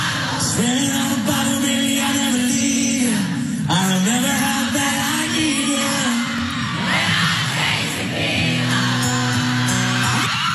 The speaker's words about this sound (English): You can hear the audience screaming every word, and then you can hear exactly what they do when shirts come off.